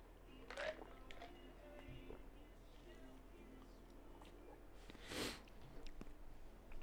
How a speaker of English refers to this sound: I'm going to take a little sip here. Hold on a second.